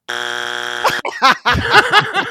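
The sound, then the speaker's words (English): A loud, harsh game show buzzer blares for almost a second, then cuts off into a burst of lively, excited-sounding voices that rise and fall rapidly. “get the buzzer ring.”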